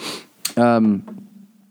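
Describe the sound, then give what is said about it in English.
A person gives a breathy sniff followed by a sharp, throaty cough that trails into a short voiced grunt, then fades to a low background hum. “I keep coughing.”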